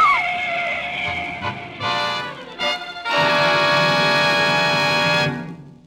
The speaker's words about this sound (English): There's a car coming. For God's sake, look out!